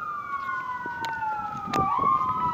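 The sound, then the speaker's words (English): An AMR ambulance siren wails steadily and loudly, its pitch sliding downward as it passes by, with faint street noise beneath and no talking. “This is AMR.”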